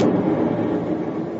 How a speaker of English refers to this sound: Good Lord, what was that? Explosion. Look, it start fire there in that building. But the chemistry lab.